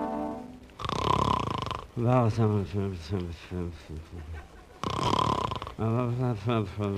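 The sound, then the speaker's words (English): Two loud, rasping snores, each followed by drowsy, wordless mumbling in a man's voice, likely a performer imitating a sleeper, repeating in a slow cycle. “There he goes, Don. Every night it's the same thing, snoring and mumbling.”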